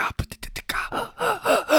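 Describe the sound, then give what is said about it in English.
A quick series of sharp, sputtering gasps and choked breaths, fairly loud, after a person inhaled saliva, followed by strained, voiced breathing that trails into a wheezy laugh-like sound. “Yeah, I was just like inhaling spit.”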